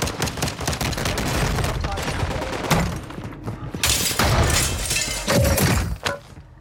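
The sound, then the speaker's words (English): Glass smashes loudly as someone lands on an empty rooftop and smashes through a skylight in an active war zone, amid rapid bursts of gunfire, with crashing and sharp impacts packed densely together for several seconds and no voices heard. “Deja quickly lands on an empty rooftop and smashes through a skylight”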